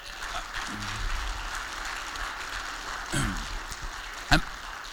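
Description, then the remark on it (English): A church audience applauds to honor Pastor Brett Yeager in a steady, dense wash of clapping that lasts the whole stretch, with a sharper crack near the end and faint voices murmuring underneath. “I just want to give Pastor Brett Yeager, if we could, let's just honor him for a second with a hand clap of just...”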